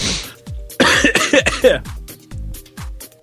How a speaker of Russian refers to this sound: И не кашляй.